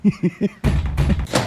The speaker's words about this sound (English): We got a knock on the door. This is not going good. Say, dog, that's the fuzz.